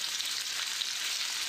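A steady crackling sizzle like food frying in hot oil, with dense popping hiss that holds level throughout and no voices.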